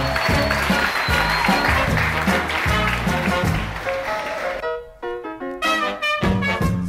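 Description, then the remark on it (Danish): A burst of dense crowd applause, given for Dansk.dk, fills the first few seconds over a low musical bed, then gives way to a bright, tonal musical jingle with sustained notes. “Klapsal til Dansk.dk, de ved, hvordan man baiter folk ind på deres lort.”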